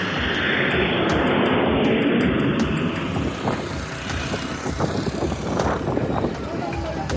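A passenger plane flying from New York's JFK Airport to Nicaragua roars overhead with a loud, steady engine rumble and a high whine that gradually fades as it passes.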